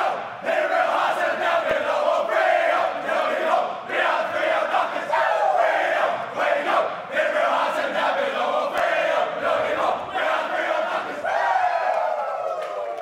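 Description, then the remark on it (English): The Fremantle football team belts out its club song together in the club rooms after the game, a loud, rowdy chorus of many male voices shouting the tune with steady rhythm, punctuated by whoops and cheers throughout. “We'll leave you with Fremantle singing the song in the club rooms after the game.”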